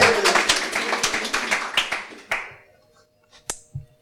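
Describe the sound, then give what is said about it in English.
A short round of applause from a few people, quick overlapping claps for about two seconds before fading out, followed by a couple of faint isolated taps. “I'll get a round of applause for that.”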